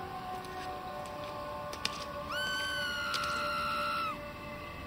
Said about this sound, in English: There's the scream again. Sounds closer now.